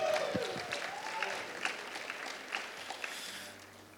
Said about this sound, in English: The shepherd and the assistant shepherd. Amen. Clap for the assistant shepherd.